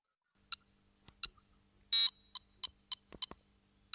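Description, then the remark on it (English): A string of short, high-pitched video game beeps ticks along at a steady, quick rhythm, with one longer, buzzier tone partway through: the successive B beeps that play when Mario dies, played as eighth notes at about 104 beats per minute. The bleeps are clear, with no voices. “such as the successive B beeps that play when Mario experiences a death.”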